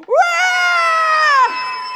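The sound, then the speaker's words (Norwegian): An audience, asked to scream as if seeing a ghost during a telling of Jesus walking on the water, screams together in one loud, high-pitched shriek that sweeps upward at the start, holds steady for over a second, then breaks off into a fainter lingering tail. “Kan vi alle skrike litt?”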